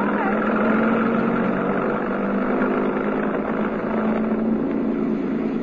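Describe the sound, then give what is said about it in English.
A truck engine roars loudly and steadily close by as the truck, which had been parked outside a stage door, speeds straight down a narrow alley toward people, a continuous rumbling drone with no pauses. “There's a truck parked outside the stage door. Hey, it's coming straight down the alley.”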